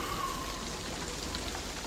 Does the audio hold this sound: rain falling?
yes